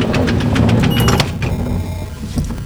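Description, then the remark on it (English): Lift doors slide shut with a short mechanical rumble and clunk, set against a steady low motor hum and busy background noise. “Doors closing.”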